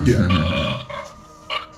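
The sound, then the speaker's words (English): A loud voice imitates a taser zap of lightning shot from fingertips to knock someone out, a croaky, burp-like buzz lasting under two seconds, trailing off with a brief guttural sputter at the end. “Is that a tasing sound?”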